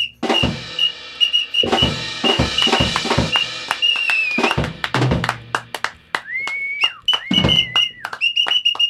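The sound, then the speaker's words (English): A whistle is blown loudly in repeated shrill blasts, some sustained and some sliding in pitch, mixed with sharp knocking and tapping noises. No one speaks. “Is that too loud? Is it too loud? My whistle.”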